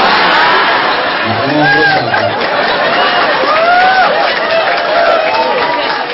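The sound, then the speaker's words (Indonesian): An audience at an Islamic religious talk gives a loud, steady wash of applause mixed with cheering and many overlapping voices, sustained for several seconds with no single voice standing out. “Gak usah tepuk tangan.”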